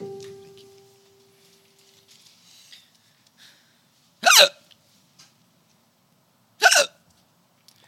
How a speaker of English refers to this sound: Looks like …'s got the hiccups.